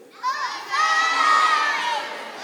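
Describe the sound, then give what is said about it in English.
A group of children yell out their ages all at once in answer to a question, their high overlapping voices blending into a loud, excited burst that swells and holds for about two seconds before easing slightly. “Listen carefully, and all of your answers are going to be different, but I want you to yell them out. How old are you?”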